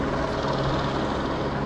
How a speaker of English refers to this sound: We got helicopters flying around here. Got helicopters flying all around here. I don't know what the deal is, but we are investigating it, okay?